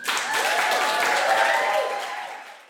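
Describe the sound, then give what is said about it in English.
A roomful of wedding guests applauding the new Mr. and Mrs. after a toast, steady dense clapping with some murmured voices and cheers mixed in, sustained for a few seconds before starting to fade. “And then the whole room, except for one lady in mourning, weeping in the corners of a …, breaks into applause.”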